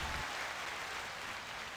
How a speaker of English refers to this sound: And everyone, let's put some hand claps for that.